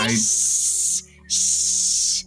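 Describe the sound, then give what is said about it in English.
Two long, sharp hisses from a female cat, each about a second, separated by a brief pause. They are loud, with a faint low voice at the very start. “Moxie starts to scream. Wow. She's hissing. I'm sorry. The cat's back.”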